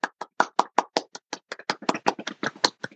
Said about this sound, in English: Bravo. Bravo. Was I clapping for myself?